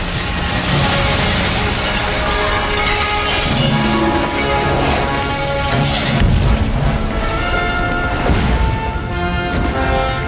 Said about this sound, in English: Then, as the ship finally crashes through the crystal ceiling, we hear a huge Superman fanfare.